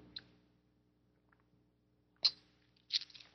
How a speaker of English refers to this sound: And take a sip of my tea here.